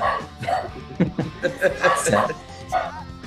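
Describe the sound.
A dog barks in a quick series of sharp, excited yaps at people knocking at the door on Halloween, while a person talks over the noise.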